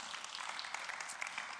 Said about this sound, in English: can we have a round of applause for our recently married couple? Here they are.